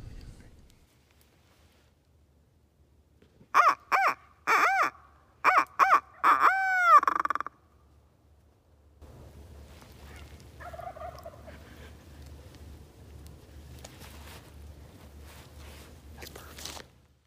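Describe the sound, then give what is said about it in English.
A rapid burst of loud, harsh bird calls rings out, like a turkey gobbling, recorded during a turkey hunt a couple of miles south of the Kansas border, then gives way to a softer stretch of outdoor ambience with faint calls. “Now that you've heard that audio, you can see that we're in the birds.”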